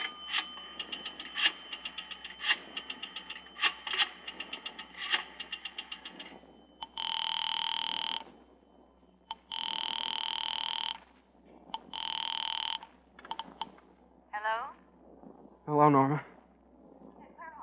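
A run of quick clicks gives way to three loud, steady telephone rings, each lasting over a second with short gaps between, followed by a few brief warbling chirps.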